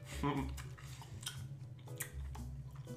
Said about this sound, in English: I'm gonna do a bite of Slim Jim and then do some of the wine.